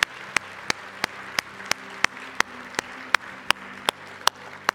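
A church audience applauds steadily as a clap offering to the Lord, a dense wash of clapping, while one loud, sharp clap beats out a regular rhythm about three times a second on top of it.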